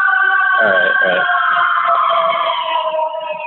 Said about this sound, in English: Oh, here comes some sirens. Probably hear that. They're coming after me. I gotta run.